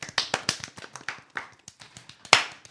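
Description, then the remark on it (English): A small group of players applauds themselves for a few seconds after defeating the first planet in Starship Impala, a scatter of sharp, overlapping hand claps at an uneven rhythm, with one especially loud crisp clap near the end. “Give yourselves a round of applause, yes.”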